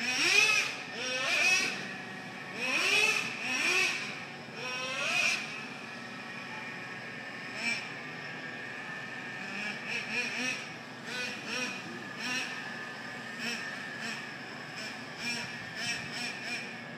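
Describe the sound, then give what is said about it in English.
A small remote-control car's motor whines in several sharp revving bursts, pitch rising and falling over the first few seconds, then settles into quieter, intermittent buzzing. “it said, fuck that remote control car, and attached to it was a piece of audio, so have a listen.”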